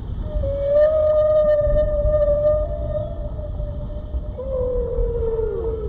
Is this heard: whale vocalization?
yes